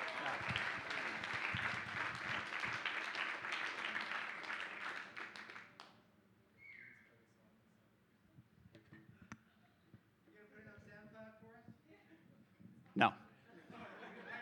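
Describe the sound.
A dense burst of audience clapping and cheering fills the first six seconds, then cuts off, leaving quieter talking with a few faint clicks and a brief laugh.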